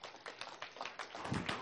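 A short round of applause: many hands clapping in a dense, irregular patter of sharp bursts at a steady, moderate level, with no voices over it.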